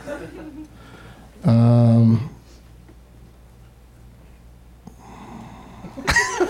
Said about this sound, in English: So creepy. There's so many people in here and you can hear someone breathing.